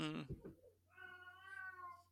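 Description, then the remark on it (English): A cat lets out an agitated, drawn-out yowl, starting with a sharp harmonic burst and settling into a sustained, wavering growl-like meow, fairly loud with no one talking. “I mean, you seem to have a very angry cat.”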